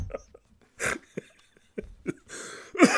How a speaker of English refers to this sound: Excuse me. Oh. Sometimes I laugh and it turns into a cough.